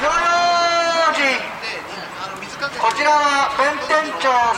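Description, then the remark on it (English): On New Year's Eve, a group of fire-watch volunteers patrolling the Bentencho neighborhood of Tokyo, Japan, shouts the long, drawn-out chanted warning "Hino Yojin" (be careful with fire), pauses, then repeats it twice, with sharp clacks of wood blocks clapped together in between and faint background chatter. “On the eve of the new year, a group of volunteers patrols Bentencho, clapping together wood blocks and shouting the warning, Hino Yojin, be careful with fire.”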